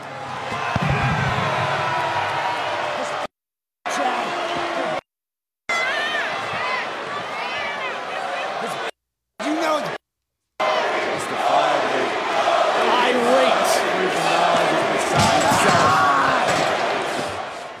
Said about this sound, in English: Looks like that crowd knows what the fuck they're talking about. Looks like that crowd is going to be as disappointed as every Raw crowd ever. Not going to lie, I did not know they were chanting Cody.